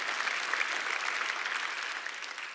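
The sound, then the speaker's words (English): An audience claps steadily during a sermon, a dense, continuous patter of many hands that holds at an even level throughout, with no voices standing out above it. “Yeah, you can clap to that.”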